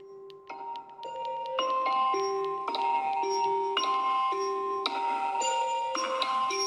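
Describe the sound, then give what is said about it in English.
A phone alarm tone plays a bright, chiming electronic melody of steady stepped notes, repeating its pattern at an even pace and fairly loud throughout, with no voices. “This is my alarm.”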